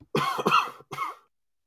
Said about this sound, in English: Excuse me, sorry about that. I try not to cough on air, but just can't always hit that cough button in time.